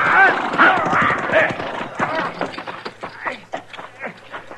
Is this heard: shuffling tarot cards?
no